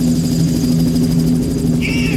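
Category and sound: vehicle, helicopter rotor sound effect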